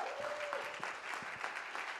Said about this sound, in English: Let's do a bigger clap for her this morning.